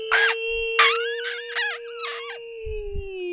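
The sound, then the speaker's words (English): A voice imitates a Formula E electric race car turning, holding a steady humming tone while adding a run of four or five high, gliding squeaks over about two seconds. “To me, you just hear squeaks.”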